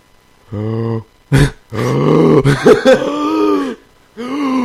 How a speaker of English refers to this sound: I had to go gasp. That sounded like a cow.